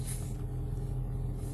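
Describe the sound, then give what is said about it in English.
A truck's engine rumbles in a steady, low drone with a faint hum as it pulls in slowly, no voices over it. “See his truck pulling in right now.”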